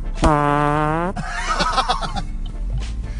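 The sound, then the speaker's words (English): A loud, drawn-out fart with a steady buzzing tone rings out for about a second, then trails into a burst of noisy, sputtering crackles. “Farts are funny, sir.”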